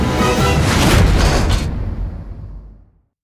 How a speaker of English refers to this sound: Wow, that was an expensive-looking explosion. I can't believe we had that in the budget.